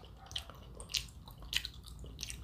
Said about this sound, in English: You know, you're chewing loud, so it's on purpose. It's an ASMR episode.